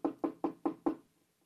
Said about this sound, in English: Oh, good. Let me knock on the door.